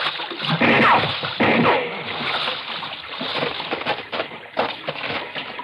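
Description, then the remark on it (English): Continuous sloshing and splashing as someone wades out of the water carrying a wounded person over his shoulder, with heavy churning strokes that ease off and return in uneven surges. “Look, just lay over on my shoulder and I'll carry you out of the water.”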